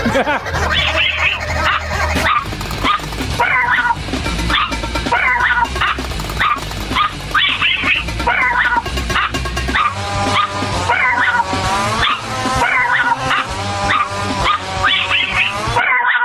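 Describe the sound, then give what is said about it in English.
Several dogs bark and yip excitedly in rapid, overlapping bursts, with high whimpers and whines mixed in, loud throughout, over a dense, noisy background. “Let's see if we can get Mama's dogs in there too.”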